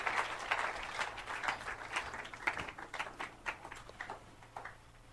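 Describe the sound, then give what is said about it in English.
An audience claps hands to thank God in a steady, overlapping patter that runs the whole time, fairly soft, with no voices speaking over it and a faint low hum underneath. “Keep on clapping, please.”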